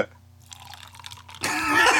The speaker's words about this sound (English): just mic'd up my pour by accident. I just put a directional microphone on a pour.